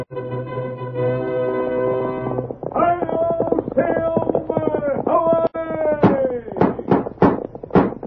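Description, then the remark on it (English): Brassy orchestral music swells at the opening of a Lone Ranger radio broadcast, then a quick, steady run of sharp hoofbeats of the horse Silver galloping pounds in over it during the final seconds. “A fiery horse with the speed of light, a cloud of dust, and a hearty high old Silver, the Lone Ranger.”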